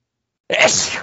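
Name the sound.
sneeze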